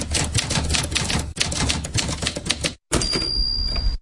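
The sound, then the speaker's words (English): Rapid, dense typewriter keystrokes clatter nonstop, pause briefly, then resume with a faint high ringing tone in the background. No one speaks. “You know, I'd be sitting there contemplating by my typewriter.”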